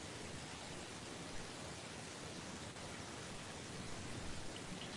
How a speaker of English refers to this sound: Is it hissing for the microphone? Yeah, I hear it.